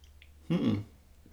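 A single short, fairly loud slurping sip of red wine, a Cabernet Sauvignon called Rumpus, lasting under half a second against a quiet background, with no talking.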